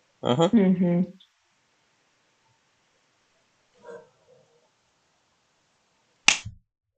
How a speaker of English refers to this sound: You're just going to hear the sound of me slapping myself in various recordings, guys.